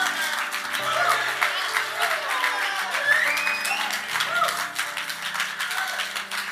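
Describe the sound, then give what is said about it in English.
A crowd on Father's Day applauds youth leaders who have just come up and shared, dense overlapping claps forming a continuous patter that holds at an even loudness, with a few scattered voices and whoops mixed faintly into the clapping. “And so I really want to, if we can all just give them a big round of applause right now.”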